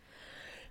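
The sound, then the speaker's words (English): A single sneeze: a drawn-in breathy inhale builds for most of a second, then breaks into a sudden loud, sharp burst at the very end. No talking. “Bless you. Thank you.”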